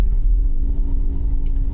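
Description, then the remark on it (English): A car rolls along slowly on a little road through the farthest entrance into Oakwood cemetery, heading down a small hill, with a steady low engine rumble and road noise, heard from inside the vehicle, continuous and fairly loud, with no talking. “Taking the farthest entrance into the cemetery. And as you can see down this little road, we're going to be heading down a hill.”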